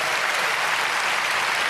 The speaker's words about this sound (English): If you are a Christian and Jesus Christ is your personal savior, and your life has been changed, can you give him thanks by clapping your hands?